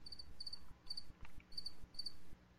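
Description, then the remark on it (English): Crickets chirp in steady, repeating bursts, a high trilling pulse every half second or so, fairly faint over a quiet background, with no voices. “Crickets. V-Bar has crickets in it.”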